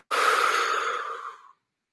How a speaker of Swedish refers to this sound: För att praktisera in att andas ut stressen. Och hitta lugnet.